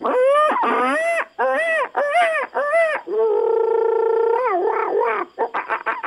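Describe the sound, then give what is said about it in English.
A person loudly imitates monkey calls: a run of rising-and-falling whoops, one long sustained hoot, then a quick burst of short chattering yelps, with no other talking. “Cut the monkey calls. I know you can talk”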